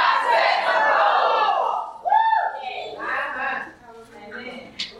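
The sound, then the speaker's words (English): An audience shouts "I'm about to set some goals" together in a loud, sustained burst at a speaker's prompt, then a single voice rises briefly before scattered voices trail off into a quieter murmur. “if you're serious about changing your life, do me a favor and shout, I'm about to set some goals.”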